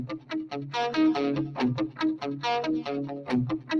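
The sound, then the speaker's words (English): An electric guitar riff played through compression, delay and reverb, with steady picked chords and sustained notes trailing into echoes, fairly loud with no talking. “Compressor, delay, reverb.”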